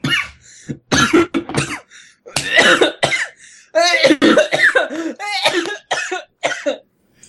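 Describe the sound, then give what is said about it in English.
A person coughs repeatedly in a loud fit of harsh, choking coughs and throat-clearing bursts with short gasps between them, like saliva caught in the windpipe. “I can't tell if that was a sarcastic cough.”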